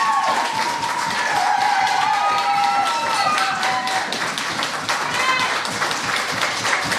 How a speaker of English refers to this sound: And keep that applause pop going.